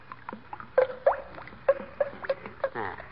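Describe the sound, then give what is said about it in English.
Thick white paint being poured into red paint to mix a color, in a series of uneven glugs and plops, a rapid burst of bubbly gurgling near the end, moderately loud with no voices. “You notice when you pour the paint out, how it goes glub, glub, glub?”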